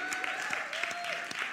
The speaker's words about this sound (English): Shout out to our virtual community joining us from really all over the world. Let's clap it up for our virtual community.